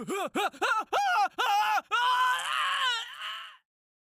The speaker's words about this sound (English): and without warning, jerks him out of the basement and into the darkness, screaming.